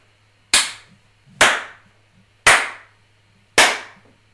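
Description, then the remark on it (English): Four sharp, loud hand claps land about a second apart, each with a brief ringing tail, alone against a quiet background hum with no talking. “My initial rating, it sounded like four slaps and a bunch of snaps, but in the form of raindrops.”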